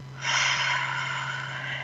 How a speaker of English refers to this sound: Take a deep breath in through your nose. See how big you can expand your belly with that breath. And then out through your mouth like through a straw. Keep breathing.